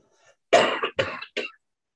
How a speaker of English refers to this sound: Well, you got a cough now, eh? Yeah, the change of weather really affects my asthma.